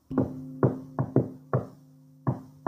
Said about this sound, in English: Well, I knocked on the wall.